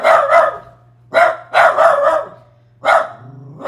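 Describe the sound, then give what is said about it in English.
A dog named Mojo barks in several sharp, loud bursts, two quick barks, then a pause and three more irregularly spaced, with no talking over them. “And we have Mojo barking.”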